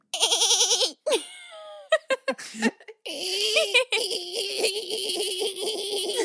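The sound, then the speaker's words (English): A giraffe calf gives loud distress bleats: a quavering high cry, a few short sharp bursts, then a long, wavering, strained bleat that holds for several seconds. “And then the bleat made by the infants under stress.”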